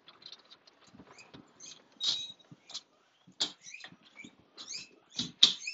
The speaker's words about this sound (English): Got us a new guinea pig after our rowdy boy passed away when we moved in. Took us a year, but we got a new one. Listen at her. She's a little turd.